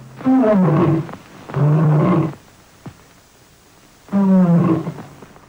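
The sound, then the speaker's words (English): Three loud lion roars from a lion standing on two crates on a film soundstage in the late 1920s, roaring into a microphone, each a deep, rough bellow lasting about a second, separated by short pauses with a faint click in the gap. “was led to a soundstage where he hopped up on two crates, one for his back paws, one for his front paws, looked into the camera, leaned into a microphone, and roared.”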